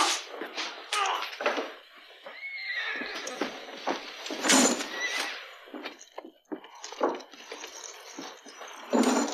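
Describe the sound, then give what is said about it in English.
A horse whinnies loudly outside, with a drawn-out, wavering neigh amid snorts and shuffling, while hooves clop irregularly on hard ground. “The horse is outside.”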